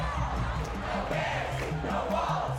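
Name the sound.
protest crowd chanting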